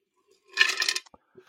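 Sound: ice cubes clinking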